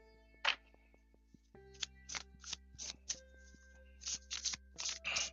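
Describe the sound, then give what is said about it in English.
An ancestor oracle card deck being shuffled, a series of crisp riffling bursts, one early then several in quick succession, with faint handling noises between them and no talking. “We're going to start with the ancestor deck here. Let me shuffle that real quick.”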